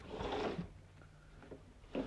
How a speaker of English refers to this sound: So, but yeah, y'all, so let me open my window. I don't know if you can hear the birds.